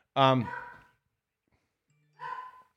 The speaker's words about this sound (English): Now my dog's barking.